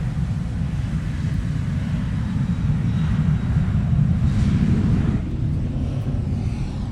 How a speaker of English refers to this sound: And those wonderful engine noises are coming from a 737 taking off.